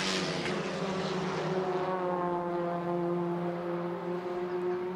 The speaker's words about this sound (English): Now the door shuts, and away goes the car.